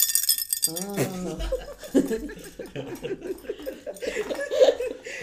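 Small metal pieces of a carousel-shaped Christmas tree ornament clink and jangle together in a bright, rattling burst as its metal horses bang off the carousel, then people laugh and chatter while faint tinkling continues underneath.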